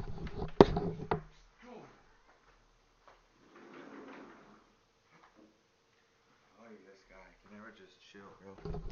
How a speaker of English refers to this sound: Hey, get! I have to close my door. Hold on, everybody.